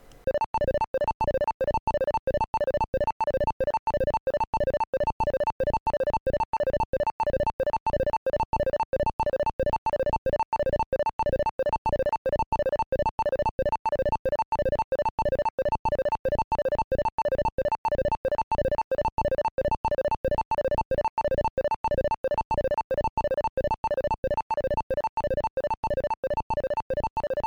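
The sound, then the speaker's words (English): The spider sound effect from the Centipede and Millipede arcade games pulses rapidly and evenly, a buzzy electronic, steady warbling loop of squeaky tones holding the same loudness for nearly half a minute with no talking. “And the centipede is the classic, or excuse me, the spider is the most classic of all. You'll get to hear that right here, right now.”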